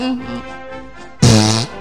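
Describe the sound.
A person blows a loud, buzzy mouth raspberry imitating a fart, a single half-second burst coming right after a low, droning hum from the voice.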